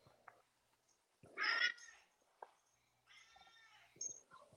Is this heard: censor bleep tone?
no